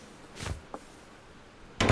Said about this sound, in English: Sorry, it closed so fast. It must have caught a draft. No trouble. Those doors are sturdy and solid.